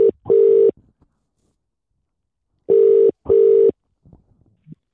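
signal or alarm, phone ringback tone

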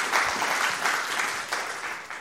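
crowd, audience applause

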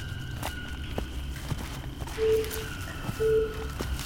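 signal or alarm, electronic beeping

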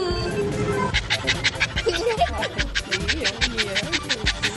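animal, dog panting and whimpering

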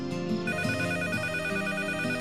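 household object, landline telephone ringing

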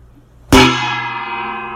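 gong being struck

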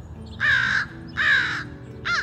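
bird, crow cawing

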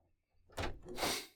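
household object, door opening

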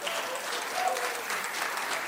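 crowd, audience clapping

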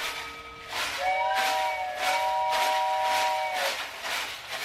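vehicle, steam engine whistle

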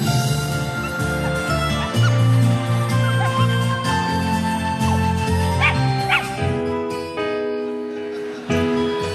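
animal, dogs barking and yipping

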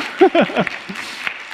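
crowd, audience clapping

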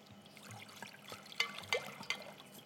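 household object, water poured

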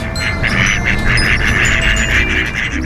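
animal, duck quacking

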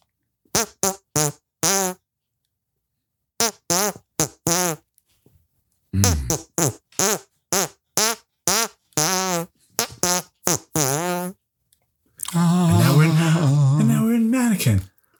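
human body sound, hand farts

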